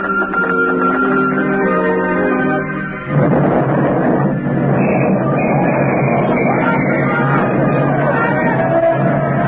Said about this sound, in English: Sentry post number 4 reporting. Explosion and fire. Explosion and fire in destroyer dry dock. Sag Island Shipyard! Sag Island Shipyard!